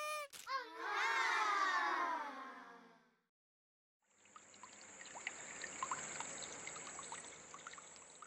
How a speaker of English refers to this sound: Oops, water's coming up. Just need to climb up a bit higher. See if I can keep my feet dry here.